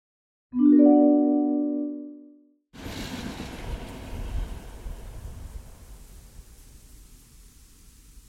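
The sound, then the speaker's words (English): A train sounds a loud, sustained horn blast, then a broad rumbling roar of cars rolls on and slowly fades as it pulls away down a tunnel. “The bag he was carrying is on the train. It's gone on without him, vulnerable, alone, and not empty.”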